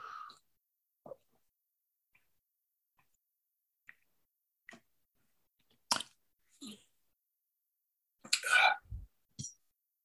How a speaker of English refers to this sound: I'm going to have a sip of water.